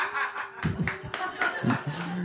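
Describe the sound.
During an audience poll on Batman actors, a lone person claps a handful of sharp, uneven handclaps for Adam West at a slow, scattered pace, while another voice makes brief mocking noises over them.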